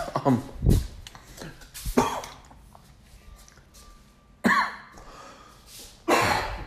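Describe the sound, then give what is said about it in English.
A long, unintended fit of repeated, loud coughing by a person, with harsh bursts spread across several seconds and brief breathy pauses between them; no talking. “And excuse me, I did not mean to cough for that long.”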